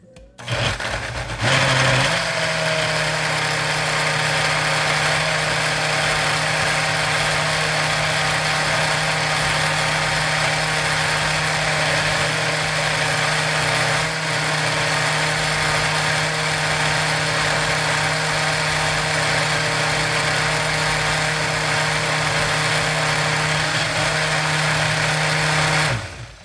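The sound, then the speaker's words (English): A blender blending a hot food mixture seasoned with salt and pepper starts up with a sharp jolt and then whirs loudly and steadily for about twenty-five seconds, a dense motor roar with a low hum beneath it, before cutting off abruptly. No one speaks. “So I'm now going to blend and see what this tastes like.”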